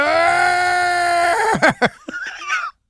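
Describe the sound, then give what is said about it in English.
A voice lets out a long, loud, strained yell imitating a man's angry outburst, made with fists clenched and eyes closed, held steady for over a second before breaking into choppy, sputtering bursts that cut off abruptly. “And he puts his balls in the fist, and he closes his eyes and yells.”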